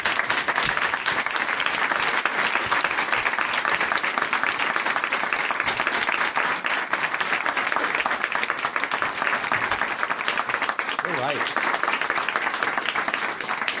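Sustained audience applause welcoming Kurt Sutter fills the whole stretch, a dense, steady wash of many hands clapping, loud and even throughout with no speech over it.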